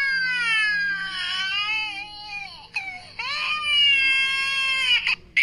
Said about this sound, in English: The kid is crying, I will be right back